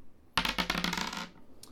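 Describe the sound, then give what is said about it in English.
Borrowed dice clatter and tumble across a hard tabletop in a quick burst of bouncing clicks that settle after about a second, rolled for a dexterity save and landing on 18, with no one talking. “Could you make me a dexterity save? Absolutely. And borrow that dice to do it.”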